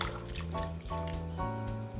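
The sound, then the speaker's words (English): Two cans of coconut milk pour steadily into a soup pot, a continuous liquid stream with glugging, shifting tones for a couple of seconds and no talking. “I'm gonna add 2 cans of it. So 2 cans of coconut milk.”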